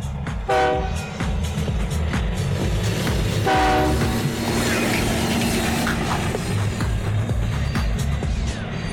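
A train rumbles past steadily and loudly, its horn sounding two short blasts early on over the continuous low roar of the wheels.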